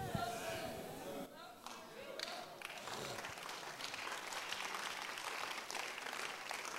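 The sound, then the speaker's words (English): A voice speaks briefly at the start, then an audience at a sermon breaks into steady applause, a dense wash of many hands clapping that stays fairly loud through to the end. “All the suspects are not clapping, but I will still preach it anyway.”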